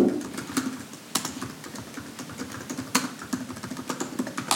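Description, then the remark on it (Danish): Steady, rapid typing on a computer keyboard, with dense clicking keystrokes and a few sharper, louder key strikes standing out, with no voices. “Der skrives.”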